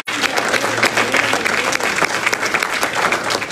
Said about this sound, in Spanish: Dale un mejor aplauso al Señor.